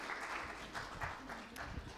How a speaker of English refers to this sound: So round of applause for our volunteers.